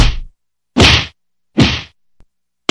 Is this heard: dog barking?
no